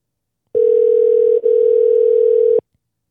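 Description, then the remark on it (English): A single steady ringback tone on an outgoing phone call to a nurse, one clear electronic burst lasting about two seconds with a tiny hiccup midway, then it cuts off into silence. “If she doesn't pick up, we'll just thank her for being a nurse.”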